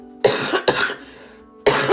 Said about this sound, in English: So today's topic, excuse me, I'm about to cough.